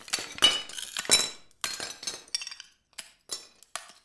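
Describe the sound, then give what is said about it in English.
Old china plates, broken for mosaic work, clink and shatter in a string of sharp crashes, about eight irregular hits with bright ringing tails that fade between impacts. No one speaks. “When he's not shattering old china”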